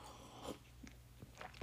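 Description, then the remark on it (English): Quiet mouth sounds of someone sipping coffee: a few soft slurps and swallows spread over a moment of near silence, with no talking. “Give me 1 minute. Let me sip on my coffee real quick.”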